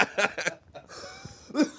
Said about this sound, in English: Still coughing